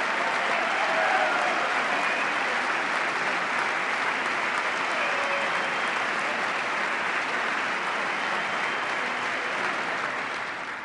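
Sustained applause from a large audience during a speech about tax cuts, a dense wash of clapping that holds steady and loud for about ten seconds before easing slightly at the end.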